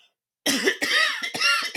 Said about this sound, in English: hold on, sorry, I gotta cough again.